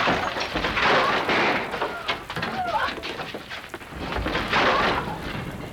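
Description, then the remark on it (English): Heavy rain from a lightning storm in Sao Paulo pours in a steady, dense hiss, swelling louder twice as low rumbles of thunder roll beneath it, with a brief chirp rising through the downpour midway. “Amidst the chaos of the storm, Sao Paulo was choked with a power outage.”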